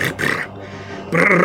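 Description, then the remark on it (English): A person imitates a goat with two rough, bleating vocal bursts separated by a brief quieter gap, the second burst loud and sustained with a strained, nasal quality. “All right, as a bonus action, the goat goes...”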